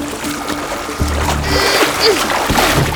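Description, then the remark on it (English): A Zodiac inflatable boat is dropped into the water, hitting it with a heavy low thump, followed by a few seconds of rushing splashes and churning water. “Drop the Zodiac in the water.”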